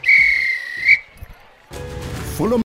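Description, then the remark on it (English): A sharp, steady referee's whistle blast sounds for almost a second, loud, blown to end a match, followed by a short pause and then a burst of busy background noise. “If this were a real bit of extra time, this is when the ref would blow the whistle because it's finished.”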